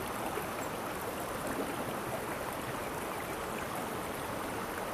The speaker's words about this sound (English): Use the sounds of the river to clear your mind.